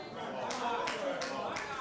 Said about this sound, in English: Clapping myself.